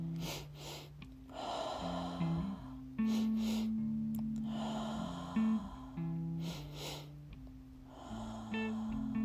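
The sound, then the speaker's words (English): Forceful breaths rush in and out in a steady repeating rhythm, each burst loud, in a triactive breathing pattern during a guided breathing exercise, with calm sustained music droning underneath. “Continue repeating your mantra to yourself as you continue that triactive breath pattern.”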